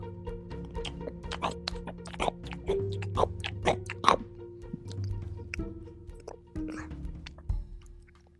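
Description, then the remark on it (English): Someone chews chocolate with moist, crackly bites, a rapid irregular series of sharp clicks and smacks that swell and fade, no talking over it. “I want to hear you eating a chocolate Easter Bunny egg tomorrow. I want to hear the same sound.”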